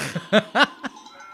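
Two short, wavering goat bleats sound close and fairly loud, one right after the other, framed by a few softer, breathy bursts.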